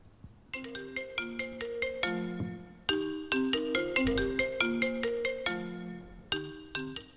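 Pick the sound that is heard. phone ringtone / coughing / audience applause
phone ringtone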